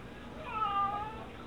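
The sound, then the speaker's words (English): A single drawn-out, plaintive cat meow rises and falls over about a second, sounding mournful against a quiet background. “Such a sad meow.”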